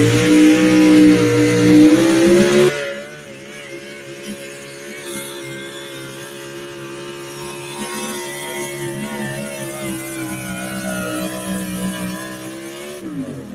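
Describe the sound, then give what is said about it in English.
A loud pulling truck engine with a four-barrel carburetor, running on 116-octane oxygenated race gas, revs hard during a truck pull run, roaring steadily with a sharp higher-pitched burst for the first few seconds, then settling into a sustained, droning pull under strain until it fades near the end. “All the old Tater trucks said, let me show you how to do this, boys.”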